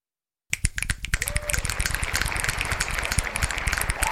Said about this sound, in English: Finger snaps and hand claps to the brother ….